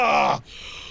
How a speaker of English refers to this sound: It's okay. He's like he's just bent over, breathing deeply. Here's a paper bag.